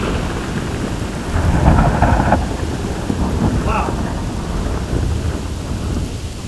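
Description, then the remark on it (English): A thunderstorm recording played back sped up by changing the file's speed with the arrow keys, so the rumbling thunder and steady hiss of rain sound thin and high-pitched, with a brief swell of rumble early on over constant rainfall. “See what happens if we make a storm for chipmunks.”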